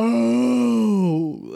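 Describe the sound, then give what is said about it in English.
A person imitates a whale call: one long, loud, moaning tone held steady and sliding slowly downward, ending in a brief low dip after about a second and a half. “At first, I thought you were bringing whale vibes, and I was like, not quite what I was going for, but I'll take it.”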